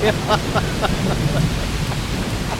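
Heavy rain from a storm pours down steadily, a dense, loud hiss with a deep rumbling undertone like rolling thunder beneath it, with no voices.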